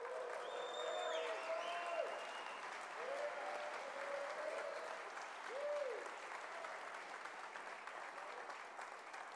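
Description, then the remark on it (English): An audience bursts into steady, dense applause that holds for several seconds, with scattered whoops and a few high whistles rising above the clapping, cheering on a man who was baptized that day. “Can we just cheer him on?”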